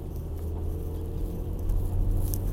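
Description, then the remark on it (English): Heavy rain patters steadily over a constant low rumble, a dense soft texture of drops with no voices. “It is raining like a motherfucker in my town, so you know what that means.”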